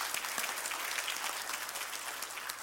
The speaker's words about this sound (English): Let's give the lady, the young lady, come. Let's give her some applause this morning.